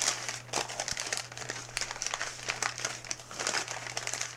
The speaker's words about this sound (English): Is that too distracting? The crinkly noise is a little distracting, yeah.